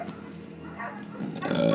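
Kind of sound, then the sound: animal, dog barking and growling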